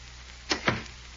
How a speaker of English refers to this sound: Why did you close the door?